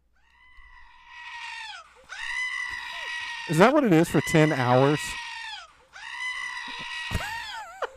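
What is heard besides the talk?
screaming goats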